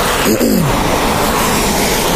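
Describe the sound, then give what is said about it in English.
A car drives past on a road as someone tries to cross it, a loud, steady rush of engine and tire noise with a brief falling pitch early on as it goes by. No one speaks. “And that other car was about to like, just keep going, you know what I'm saying?”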